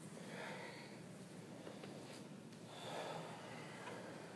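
Soft, airy breathing at a low level during a yoga practice, slow deep inhaling and exhaling, with a slow inhale swelling near the start and another gentle breath a few seconds later, unhurried, with no talking.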